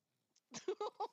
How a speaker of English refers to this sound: Is that a dog purr? Yep, because I'm holding her. She's happy.